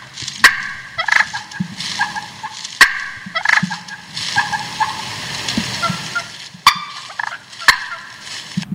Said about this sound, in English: Oh. So that is a sign. That is great. That is a cluck and purr is... it's a sign of contentment. That's a happy turkey.